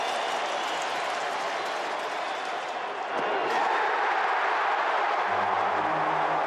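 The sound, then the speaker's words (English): A packed baseball stadium crowd roars with cheering and applause as Clayton Kershaw gets his 200th win, a loud, dense, unbroken wall of sound that swells slightly halfway through, with a low sustained tone creeping in near the end. “And the crowd there, just listen to the crowd.”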